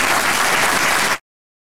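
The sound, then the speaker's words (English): A burst of steady clapping, many hands at once, as President Bill Clinton turns his back on questions after his statement and the First Lady follows, applauding; loud and dense for about a second before cutting off abruptly into silence. No voices are heard. “He turned his back on questions as the First Lady followed, applauding.”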